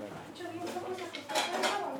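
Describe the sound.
Dishes and cutlery clink and clatter as three different pasta dishes are prepared, with scattered bright metallic taps and scrapes growing louder toward the end, while voices murmur in the background.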